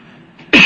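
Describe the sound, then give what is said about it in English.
A single sharp, loud cough bursts out after a brief moment of near silence, with no talking around it. “It was a cough.”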